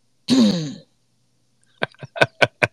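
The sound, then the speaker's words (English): A single voiced throat clearing, fairly loud, is followed after a pause by a quick series of five short, sharp bursts, like small coughs or clicks. No speech. “Cough, yep. Cough, UCP cabinet.”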